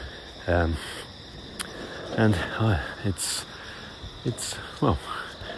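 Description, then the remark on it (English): A grasshopper or locust keeps up a steady, high-pitched background chirring on a pleasant morning around 7 o'clock at about 28 degrees, with brief louder bursts, while intermittent voiced sounds come and go over it. “This in the background, I guess, is some kind of grasshopper or locust.”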